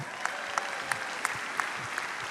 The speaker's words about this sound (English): And end scene. Round of applause.